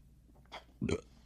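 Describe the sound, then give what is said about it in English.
A short burp after drinking carbonated alcohol rumbles out, preceded by a brief breathy sound, then quiet. No talking. “I'm going to be burping a lot now because we drank this. It's carbonated alcohol.”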